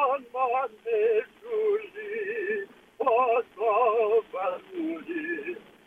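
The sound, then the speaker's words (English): A man, a coworker, sings opera over a phone line, apparently from a car, his voice thin and tinny, holding loud sustained notes with wide, wobbling vibrato, broken by short pauses for breath. “Thought I would showcase my coworker's lovely opera singing.”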